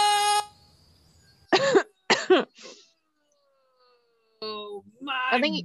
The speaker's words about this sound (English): I think you screamed so loud, it like shorted out the audio.